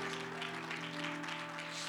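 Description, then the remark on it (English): An audience claps hands together in a dense, steady wash of applause that fills the room, with a sustained low tone humming underneath, giving the Lord a hand clap of praise in the morning. “I wonder if we could give the Lord a great hand clap of praise this morning all over this room.”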